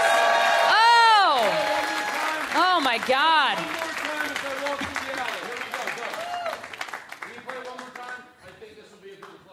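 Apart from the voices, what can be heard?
audience applause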